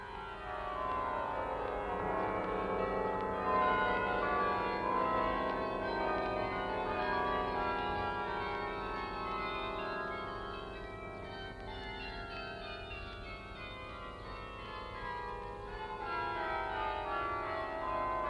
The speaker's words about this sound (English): Sometimes passengers landing from liners are welcomed by the famous carillon of the cathedral, played by Dr. Stavka Broz, who begins with a cascade, a sound as delicate as the lace made in the country where this style of bell ringing has its home.